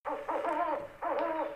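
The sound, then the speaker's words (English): Owls hooting at night in two fairly loud calls, each a wavering, slightly harsh hoot with a brief gap between them. No one speaks. “The owls hooted.”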